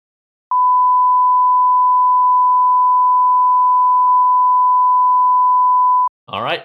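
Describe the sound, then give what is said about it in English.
A single steady, loud censorship bleep tone at a fixed pitch holds unbroken for several seconds, completely covering a spoken joke, then cuts off as a voice resumes briefly at the end. “Are you ready for my beeped one?”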